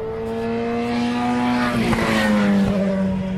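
Race cars, a BMW V8 and an LMP2, roar past at high speed, their loud, sustained engine whine dropping sharply in pitch as they sweep by, with a second pass following right behind. No voices.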